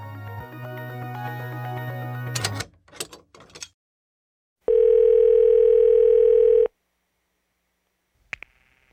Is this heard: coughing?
no